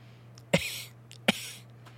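Two short, sharp hiccup-like coughs from a person, spaced under a second apart, each a quick abrupt burst over a low steady hum, with no talking.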